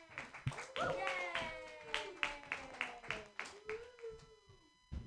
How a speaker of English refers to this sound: Put your hands together, everybody, for